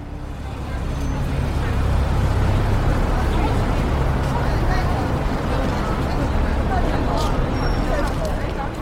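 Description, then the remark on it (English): Steady, rumbling traffic rolls slowly past without pause on an Edinburgh street, with a murmur of distant voices from tourists and shoppers and a faint, far-off ringing Edinburgh tram bell barely rising above the noise. “Traffic is slowly rolling past, and far in the distance, I can hear the ringing sounds of the Edinburgh tram.”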